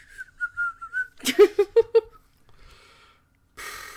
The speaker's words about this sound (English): …'s like, …'s whistling.